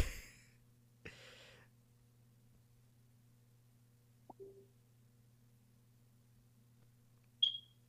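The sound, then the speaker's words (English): A single sharp, high-pitched chirp, a smoke detector's low-battery beep, rings out near the end, following a quiet stretch with a steady low hum and a couple of soft bumps. “That beep there was pretty much the signal”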